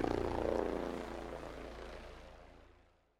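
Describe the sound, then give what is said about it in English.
A helicopter's rotor thumps steadily with a low engine drone, loud at first and then slowly fading as it moves away. No voices. “The sound of a helicopter can reveal a memory.”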